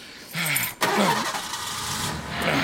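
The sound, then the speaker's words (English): A car engine cranks with a whirring starter, catches after a brief pause, and settles into a steady running rumble as a traffic jam starts moving, with no voices. “Oh, looks like the traffic jam's moving here.”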